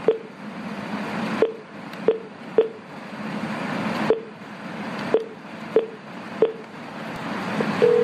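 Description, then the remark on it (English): Telephone dialing tones: a series of about nine short, clicky beeps at an uneven pace, each one a quick key press, over a steady background hiss, with a held tone just at the end. “So even though it's something that still is hard for me to do, I picked up the phone, and here's what happened.”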